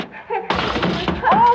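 A sudden loud crash and clatter, like someone stumbling over an object and falling, bursts in after a quiet moment, with a short vocal cry rising at the end.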